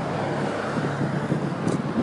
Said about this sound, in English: Damn cars going by so fast, making some of the damn noise. Knock it off! They turn you into electric cars. You make so much noise.